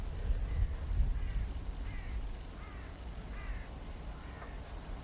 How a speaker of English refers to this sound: Sort of lonely cries of crows.